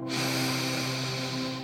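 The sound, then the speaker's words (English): A slow, deep inhale through the nose, one of three deep breaths of fresh air, a steady airy rush lasting over a second, with a soft sustained tonal drone humming underneath. “Let's go ahead and take 3 deep breaths here. Breathing in new, fresh, clean air.”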